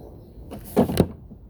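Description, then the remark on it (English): A door opens with a brief rushing scrape and then thuds shut, two quick knocks close together, fairly loud, with no voices, as a woman comes in heading for the restroom and goes to the wrong door. “Tambra came in and she was going to go to the restroom and she went to the wrong door.”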